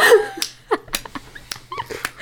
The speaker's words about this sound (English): Woof.